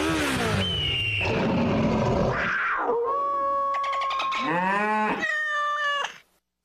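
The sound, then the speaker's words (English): A sound-effects man imitates a motorcycle engine revving with his voice, rising and falling pitched sweeps in several bursts over about six seconds, loud, then stopping abruptly. “At Progressive, we know there's nothing like the feeling of riding a motorcycle with your crew on the open road.”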